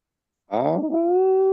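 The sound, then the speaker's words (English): A dog lets out a single drawn-out whimper after a moment of silence, starting rough and wavering, then settling into a steady, fairly loud high-pitched whine. “Sorry, the dog won't shut the hell up.”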